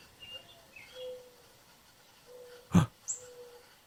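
Soft, low hooting bird calls repeat, a few drawn-out tones spaced apart, with a brief sharp rustle or thump partway through and higher chirps faintly above.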